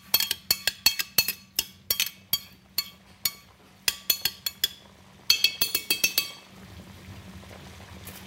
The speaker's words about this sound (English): I know you can hear that, the sweet sounds of those artichokes bubbling in that oil right there.